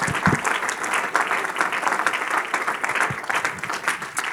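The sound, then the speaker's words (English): An audience claps hands in praise, a dense, steady wash of many overlapping claps sustained at an even loudness throughout, with no voices standing out. “In Jesus' name, shall we clap our hands unto the Lord and give him praise.”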